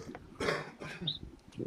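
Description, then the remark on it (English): Two harsh, raspy coughs in quick succession from someone with a bad cough, with a throaty rasp trailing each burst and another rough throat sound starting just at the end. “Damn, I got a bad cough.”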